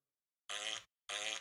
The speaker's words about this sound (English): as George Carlin says, farts are funny